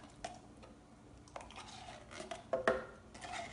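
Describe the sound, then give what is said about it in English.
Thick canned pumpkin, the entire can, scraped and plopped into a blender jar, with a few metallic clinks and soft wet squishes, sharpest near the end; no one speaks. “I'm gonna use the entire can of pumpkin. Put it right in my blender.”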